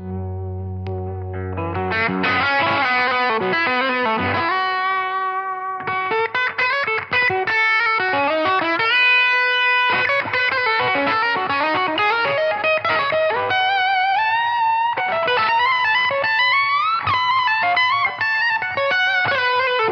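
Electric guitar lick played out at the end of a show through stacked effects pedals, all switched on: distorted, reverb-drenched melodic runs and ringing sustained notes flowing continuously at a steady, loud level, with no one talking.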